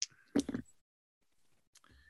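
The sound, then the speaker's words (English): A short rattling clatter of dice tumbling across a surface for a spot hidden roll in a tabletop game, a few quick knocks, followed by a brief pause and a couple of faint clicks. “Okay, give me a spot hidden roll. Come on, dice.”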